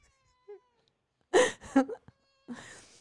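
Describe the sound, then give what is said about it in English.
A spayed female cat meows several times, with a short faint chirp first, then a louder drawn-out whining meow and a softer plaintive one after a pause, sounding like whimpering. “She is not a radio cat.”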